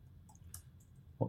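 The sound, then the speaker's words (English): A few soft, scattered clicks of typing on a computer keyboard while using ChatGPT, quiet, ending with a slightly heavier thud, with no voices. “What are you typing right now?”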